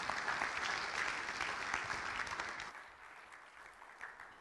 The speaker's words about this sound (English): Please give him a round of applause as he comes up.